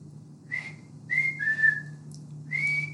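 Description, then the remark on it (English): A hunter in the woods whistles a few short, high-pitched notes to get the attention of other hunters about 60 yards away, each a sharp steady tone with a slight pitch slide, repeated in quick succession over a low, constant background hum. “every single hunter in the woods hears that note, and they stop to listen”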